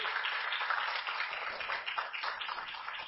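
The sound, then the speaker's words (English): An audience clapping their hands together as a hand clap to the Lord for the sermon's text and topic, a dense, steady wash of many overlapping claps that holds at an even, moderate loudness for about three seconds with no voices on top. “Let's give the Lord a hand clap for the text and the topic.”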